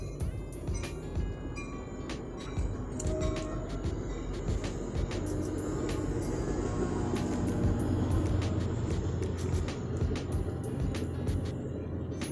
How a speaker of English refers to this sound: hold on guys, train coming.